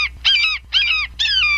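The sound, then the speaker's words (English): A hawk or falcon screeches three times in a row, each call a harsh, drawn-out cry separated by brief pauses, loud with no other sounds. “Everything needs a falcon. Everything's better with falcon. A hawk or a falcon.”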